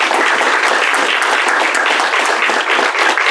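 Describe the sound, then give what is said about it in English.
A crowd applauds steadily at the end of a presentation, with dense overlapping claps forming a loud, even wash of sound that holds without a break, no voices audible over it. “It just remains for me to ask you to join me in a round of applause for Carrie Lee and a terrific presentation.”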